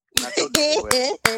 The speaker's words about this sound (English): Do I got to do my claps?